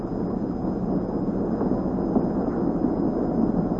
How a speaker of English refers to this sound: Nice, soft sound of those engines purring behind me. This houseboat sleeps 8.